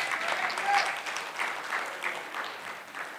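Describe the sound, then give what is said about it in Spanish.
Steady applause from an audience, given to the Lord during a Spanish-language sermon, a dense wash of many hands clapping at a moderate level throughout, with no one speaking over it. “Si tú entiendes eso, dale un aplauso al Señor.”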